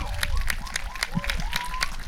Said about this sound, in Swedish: Och jag tycker vi ger en jättestor applåd, mina damer och herrar